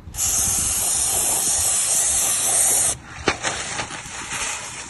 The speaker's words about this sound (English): And then what you're gonna do is you're gonna just give a quick spray. You don't wanna do too much. You don't wanna sit there and try to fill it in because it's gonna drip and it's gonna mess up. So you give a nice quick spray on it.